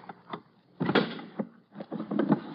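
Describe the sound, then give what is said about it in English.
A locked wooden drawer is rattled and yanked in several short, effortful bursts, with thumps and scraping clatter as it is forced open, with no voices. “why would you keep this drawer locked, Deemsy, old boy? Let's just force it open.”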